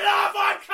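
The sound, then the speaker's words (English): An actor imitates an aggressive roar for a study on how roars convey strength and size, a single loud, harsh, voiced bellow lasting under a second, wavering briefly before surging again at the end. “Jordan got some actors to come along and roar.”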